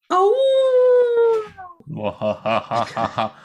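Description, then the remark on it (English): A person imitates a wolf's howl, a long, loud, sustained tone that rises and slowly falls for about a second and a half, followed by a stretch of talking. “howling wolf for this Halloween themed episode.”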